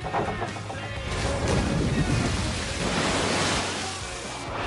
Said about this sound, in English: You want to see a splash? I'm going to show you a splash. Ready? Hey, Billy, stay over near the ladder.